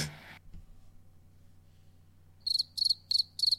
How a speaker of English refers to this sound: You said the crickets were dead.